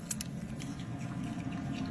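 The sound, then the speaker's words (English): A small pet monkey gives off quick, faint squeaks and chittering, mouse-like sounds, scattered over a low steady hum with no one talking. “Hear those mouse sounds?”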